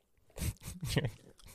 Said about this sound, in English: Let me spit my gum out.